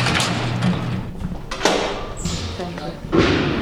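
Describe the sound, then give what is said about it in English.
A heavy prison sally port security door at Pelican Bay, a supermax prison in northern California, slams shut with a loud metallic thud, followed by another clanking impact, while people talk in the background. “I have to get through 11 locked doors and sally ports just to interview him.”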